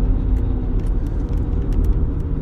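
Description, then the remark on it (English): A loud, deep engine rumble from an old, beat-up Mazda Miata with racing modifications, revving with a rough, throaty, pulsing texture for a couple of seconds. No one speaks. “Sounds like it's got some racing mods on it. It's an old Mazda car.”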